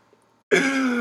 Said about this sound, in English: Whoa, no coughing. Violation. Cough alert. No, honestly, coughing got me fucked up.